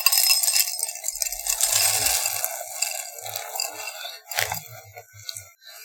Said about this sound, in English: I've opened up the bag and now I'm pouring in the cereal.